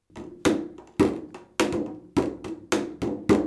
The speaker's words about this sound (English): I'm going to play a song for you today on this drum that I made with my daddy. You see, this drum is made out of paper mache from the Bible. Okay, so I'm going to thump this Bible for you.